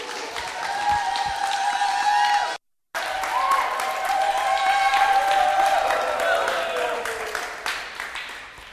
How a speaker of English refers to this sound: Hello? I love that you're clapping. I haven't done anything yet.